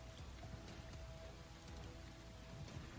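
Steady rain falls continuously, a dense hiss of drops pattering on a surface with low rumbling beneath, even throughout, with no voices.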